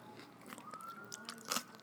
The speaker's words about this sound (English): Is cucumber a good crunch? Yeah.